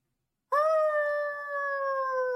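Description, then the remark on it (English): After a brief silence, a dog lets out one long, loud howling moan, its pitch holding steady and then sagging slightly as it drags on. “Her howling moan sounds crazy.”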